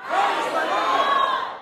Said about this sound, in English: Now, what I want you to do now in this exercise, when I count to three, I want you both to yell out from your side and your side what I've asked you to do. Let's do it. One, two, three.